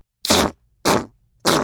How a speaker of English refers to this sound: … let out a couple of farts. Ew, it's so stinky. Who farted?